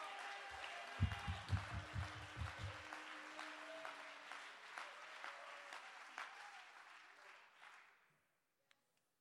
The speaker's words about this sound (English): Oh, somebody clap your hands and give God the praise.